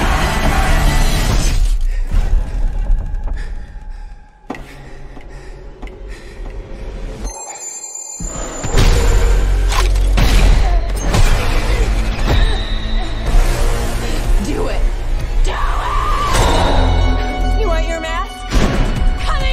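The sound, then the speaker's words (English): Loud, dense audio from the movie trailer for Scream and Halloween Kills: crashing and shattering hits and tense music under bursts of dramatic voices, with a brief sudden drop to near silence before it slams back in. “All right, we're back here in the booth broadcasting live from the City of Champions, and that was the trailer for Scream and Halloween Kills, which opens up this week.”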